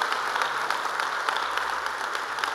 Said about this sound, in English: Want to give God a mighty ovation? You give God a mighty ovation.